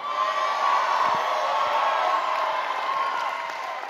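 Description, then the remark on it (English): A large church audience yells and cheers loudly and continuously in response to the preacher's shout, a dense roar of many voices with whoops rising above it, sustained for several seconds without a break. “So if I shout house and you yell, that means the house is coming.”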